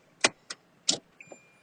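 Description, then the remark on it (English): Inside the moving 7 city bus on Haight Street: a few sharp rattling thumps over a low rumble, then a thin, steady high whine, with no one speaking. “I am on the 7 bus on Haight Street.”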